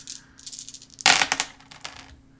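Dice are rolled for a difficulty-4 check, clattering and tumbling across a hard table, a sharp burst of clicks at first, then scattered lighter taps as they roll to a stop, fairly loud with no talking.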